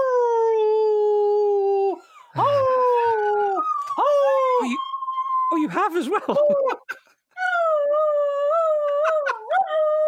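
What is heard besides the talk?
dog howling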